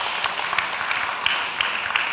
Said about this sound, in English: I just saw her in the crowd. So give her a round of applause.